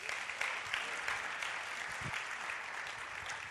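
An audience claps steadily, a dense, even crackle of many hands holding at a moderate level for a few seconds without any voices.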